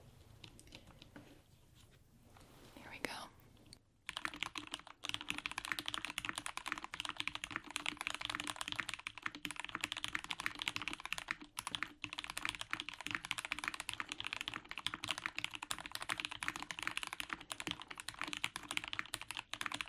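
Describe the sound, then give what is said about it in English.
Rapid, continuous clatter of a mechanical keyboard with Pro White switches being speed-typed on in a test, dense, starting after a brief quiet moment and running steadily to the end with no talking. “Testing & Speed Typing on 4 Keyboards”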